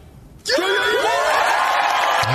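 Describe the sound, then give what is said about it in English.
A crowd bursts into loud cheering and whooping, with rising yells and whistles layered over a dense roar of voices that starts abruptly after a quiet moment and stays loud throughout. “And the crowd loves it.”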